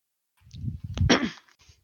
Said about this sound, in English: Oh, I hear dice rolls.